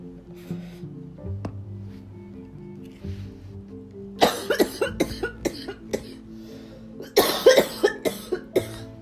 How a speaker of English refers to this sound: Hold on. I can't do this shit at the same time. I'm over here about to die. Dog, I flipped this card over and started to choke on my smoke.